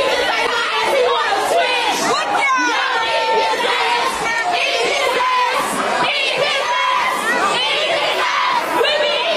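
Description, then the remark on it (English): A dense crowd in a club in London shouts and sings along together, many overlapping voices chanting loudly and continuously with rising melodic pitches, energetic throughout. “And everybody in the crowd was singing that.”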